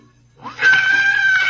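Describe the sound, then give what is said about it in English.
A harsh, high-pitched metallic screech of a carriage wheel scraping against the curb outside Holmes and Watson's lodgings starts abruptly and holds steady and loud for about a second, over a faint low hum. “It was caused by the scraping of a carriage wheel against our curb.”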